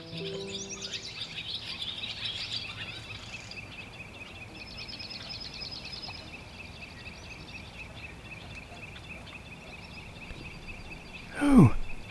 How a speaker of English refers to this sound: Excellent plumage. Red-throated warbler. Oh my. Oh, how rare. They're still here this season.